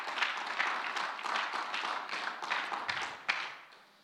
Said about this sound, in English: Let's give the Lord another mighty hand clap.